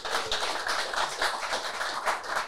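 A round of applause: many hands clapping in a dense, steady patter that holds at an even, fairly loud level for a couple of seconds, with no voices over it.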